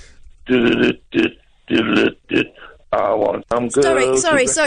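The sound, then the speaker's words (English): A radio caller sings over the phone line in short, rough bursts, each note thick with wet, phlegmy gurgling in the throat, then runs into a longer, strained stretch that rattles and crackles loudly. “Could you cough or have a drink of water or something? Because you are rolling grollies there and it makes me want to chunder.”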